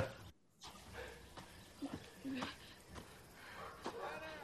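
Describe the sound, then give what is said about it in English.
Several sharp, irregular barks from dogs, sounding over a busy, noisy background with faint voices in the mix. “Shit, dogs. Where the hell did they get the dogs from?”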